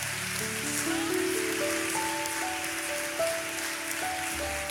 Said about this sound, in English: Let's lift up one more hand clap of praise to our God who is so worthy.